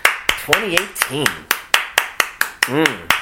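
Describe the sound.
A single person claps steadily, about a dozen sharp hand claps in an even rhythm, with brief bits of voice sounding faintly between some of the claps.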